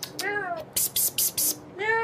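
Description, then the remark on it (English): A person mimics a cat's meow, a drawn-out wavering call, then several short breathy hissing bursts, then another voiced meow at the end. Fairly loud. “And in the room are three Arasaka agents on all fours, meowing.”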